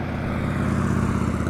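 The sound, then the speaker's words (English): A larger motorcycle's engine drones in a steady, low rumble with a throaty hum, holding fairly even in loudness as it goes by, with no talking. “Here comes a larger motorcycle.”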